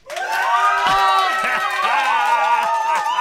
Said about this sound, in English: Listen to this. This very rarely happens. Control room round of applause. Here we go.